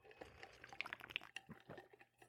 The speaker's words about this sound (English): Had to take a sip of my vitamin water.